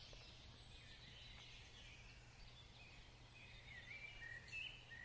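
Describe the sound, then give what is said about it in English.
Faint birdsong and scattered chirps in a forest, through a steady outdoor hush, with a low constant hum underneath and a couple of clearer whistled notes near the end. “It's actually in the forest where you can hear birds singing and all that sort of thing.”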